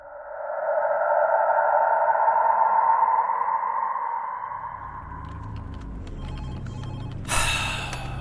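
A steady whooshing drone fades into a low rumble, then a telephone starts ringing near the end: a bright, metallic ring that cuts in sharply, with no one talking.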